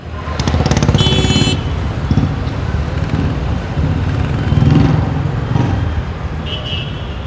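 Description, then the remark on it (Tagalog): Busy highway traffic roars steadily, with cars and motorcycles rumbling past in overlapping waves, plus a brief high-pitched tone near the start and another near the end. “Tapos syempre, ibang-iba kapag Pinoy na director ang humingi sa iyo ng highway, kasi pag sinabi naman locally na highway, ang unang pumapasok sa isip natin, traffic. Kasi yung mga highway natin, laging traffic.”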